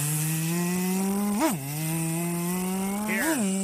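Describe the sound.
A voice imitates a Formula 1 racing car with a steady, buzzing engine drone that stays loud throughout. Its pitch briefly swoops up twice, like gear-shift revs, and no one speaks.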